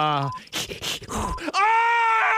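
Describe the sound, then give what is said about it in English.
A voice mimics a woman in labor giving birth: a short groan, then several quick, forceful panting breaths, ending in a long, strained, high-pitched moan, loud. “It's that going through labor, having a baby.”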